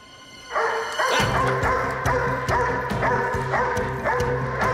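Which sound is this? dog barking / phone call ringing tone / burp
dog barking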